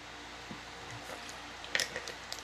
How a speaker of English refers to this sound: Just taking a little sip of that Gatorade, real quick.